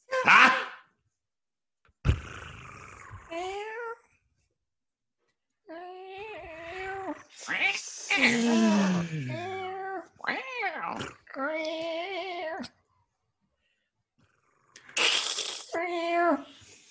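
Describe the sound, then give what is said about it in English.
A human voice mimics a cat, giving a series of drawn-out, wavering meows and yowls in several bursts separated by short pauses, loud, with no other sounds. “You have come to the great cat seeking advice and wisdom.”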